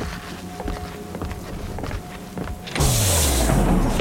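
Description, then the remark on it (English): A few footsteps tread along to the entrance of a facility, then automatic doors slide open with a sudden loud motorized whoosh and a hum that sinks steadily in pitch, filling the last second. “The men walked to the entrance, and the doors automatically opened.”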